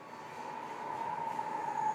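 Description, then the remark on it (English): A bullet train travelling from Tokyo to Nagoya, Japan, runs along the rails with a steady rushing roar and a thin, sustained whine riding on top, growing slightly louder over the two seconds. No voices. “We met up in Tokyo and took the bullet train to Nagoya, which is in itself an experience.”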